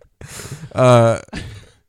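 Exaggerated heavy breathing: a breathy inhale, then a loud voiced, groaning exhale, then a softer breath trailing off. Performed by a person, with no words spoken.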